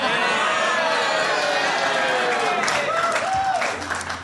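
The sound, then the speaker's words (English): A crowd applauds steadily for about four seconds, a dense, loud wash of clapping mixed with scattered voices and whoops, easing off slightly at the very end. “That applause has just qualified.”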